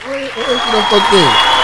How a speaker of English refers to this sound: Thank you. I'm glad. Thank you. I'll applaud myself.